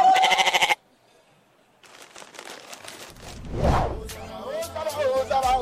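A goat bleats loudly and shakily up close, falls silent, then bleats again in a longer wavering cry over rustling and a low rumble.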